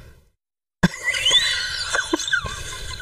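A microphone gets bumped by a blindfolded person after a moment of silence: a sudden heavy thump, then scattered knocks and rubbing with thin, high squealing tones sliding up and down. No one speaks.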